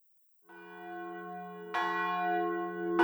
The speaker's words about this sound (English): At 5 in the afternoon, the bells called them all for Vespers.